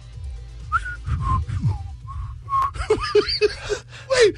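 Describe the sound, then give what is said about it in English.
A person whistles a few short, wavering notes separated by breathy puffs of air, the tune uneven and halting before a final rising note. “Did you hear how beautiful my whistle was?”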